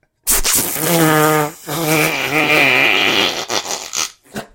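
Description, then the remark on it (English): A voice imitates a fart with a loud, buzzy raspberry lasting several seconds, split into two long bursts with a wobbling pitch, then sputtering out in a few short puffs. “And then, like, the fart was always the peakest fart. It wasn't like a little... It was like...”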